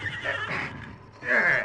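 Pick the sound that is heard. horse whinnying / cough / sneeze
horse whinnying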